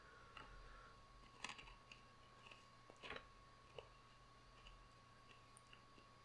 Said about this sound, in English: Sit there looking at me chewing your ice? I don't know. I don't know what you expect. How are your teeth not crying out in pain? It feels nice.